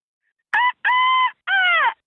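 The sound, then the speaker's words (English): A woman imitates a rooster's crow in three loud, drawn-out bursts, the last one sliding downward in pitch, with short pauses between and no other talking. “…, when you're ready, crow like a rooster.”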